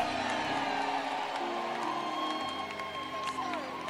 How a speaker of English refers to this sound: Put your hands together for Jesus. Yeah!